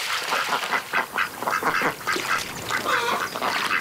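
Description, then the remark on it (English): A group of ducks on a river quacks continuously, landing on the water, their raspy calls overlapping in quick, uneven bursts with no pauses and no talking. “I trailed my hand in the water and looked at the ducks skidding to a water landing.”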